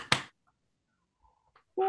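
A single sharp, loud hand clap rings out, followed by near silence and a much fainter tap before a voice starts at the very end.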